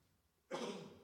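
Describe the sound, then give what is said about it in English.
A single sudden sneeze bursts out after a moment of near silence, loud and breathy, its noisy rush trailing off slowly. No one talks. “I did sneeze.”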